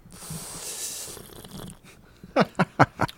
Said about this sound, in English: I'm gonna take a little sip of mine here. Mine has a pink color and it's mostly clear. Let me take a sip here for listeners' enjoyment.